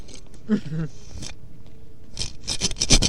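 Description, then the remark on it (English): Scratchy rubbing and scraping right against a microphone held at the crotch of someone's trousers, with bursts of harsh rustling that intensify near the end as the trouser fabric and zipper grind over it; voices murmur briefly underneath. “You hear it's on the zipper?”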